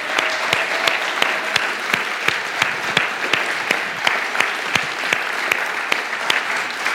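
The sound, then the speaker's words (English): An audience claps steadily to thank the Kidmo teachers, a dense patter of many hands with sharper individual claps standing out at a fairly regular beat. The applause stays moderately loud and sustained throughout, with no voices heard. “They're the ones that we should be applauding.”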